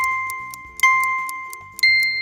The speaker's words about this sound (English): 3 beeps and the answer will be revealed.